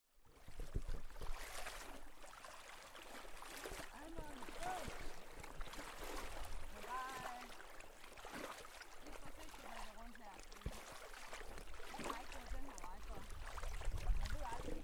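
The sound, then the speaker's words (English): Water sloshes and splashes in a steady, repeated rhythm as someone wades through knee-deep water in an expansive wetland at Gullensteen Strand on the northern coast of the island of Fyn, Denmark, with faint bird-like calls and murmuring in the background. “So I'm walking in knee deep water in Gullensteen Strand. It's a beautiful expansive wetland, I would say, on the northern coast of the island of Fyn in Denmark.”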